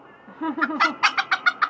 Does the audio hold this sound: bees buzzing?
no